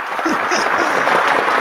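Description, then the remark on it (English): A final round of applause for a departing guest, dense and steady clapping that holds at an even, fairly loud level for the whole moment without any clear pause or swell. “So another final applause there.”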